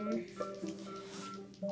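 A parrot named Toenail beeping: a run of steady, electronic-sounding tones that hop between a few pitches, moderately loud and continuous, with no one talking.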